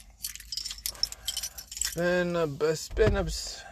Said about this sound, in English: It's been, that's my keys. Where's my keys? Okay, that's my keys.